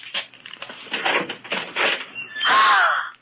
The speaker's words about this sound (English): Open that closet door.